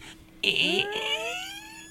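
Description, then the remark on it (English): A person imitates a creaky door with a single drawn-out vocal creak, starting abruptly and gliding upward in pitch for about a second and a half, strained and raspy, with no other talk. “Well, let's hear the creaky door.”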